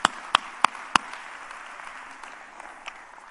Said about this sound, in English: Let's clap our hands to the Lord and give Him praise.